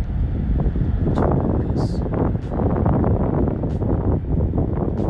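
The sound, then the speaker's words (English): Ocean waves wash onto a beach in Boston at sunset in a steady, loud, rushing roar with no pauses, crackling and hissing as water churns, with gusty wind mixed in. No one speaks. “Hear the waves. It's the best sound.”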